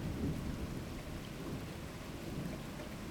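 A steady thunderstorm: heavy rain hisses continuously while low, rumbling thunder rolls underneath at a constant moderate loudness, with no voices.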